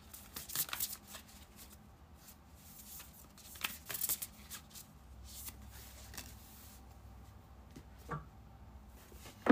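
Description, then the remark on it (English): Cards from a Moon tarot deck are shuffled in quick bursts of crisp, papery riffling and flicking, with short pauses between and a soft low hum underneath; no one speaks. “Let's pull from the Moon deck.”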